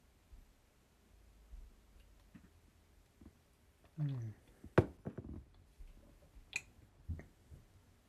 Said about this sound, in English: I heard the slurp.